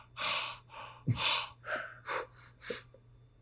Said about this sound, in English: It's just like air. It's like if I'm breathing with my mouth open, it's like.